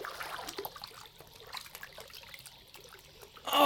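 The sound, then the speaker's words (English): Water trickles and splashes softly, with scattered small drips and sloshes as hands move through it while washing up at a campsite, ending in a brief louder splash. “Before we get a fire going, let's go over to the water and wash up.”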